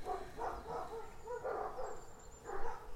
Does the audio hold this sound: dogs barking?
yes